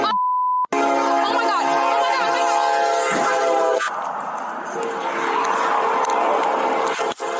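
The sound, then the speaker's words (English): A brief electronic beep, then a train horn blares loudly for a few seconds before a sudden crunching impact as the train smashes into a police car, followed by the heavy, roaring rumble of the train rushing past and a final sharp bang. “So the train came through and just smashed the car.”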